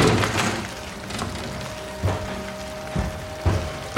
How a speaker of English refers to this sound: It doesn't close. The rain's getting in. The frame's broken, idiot.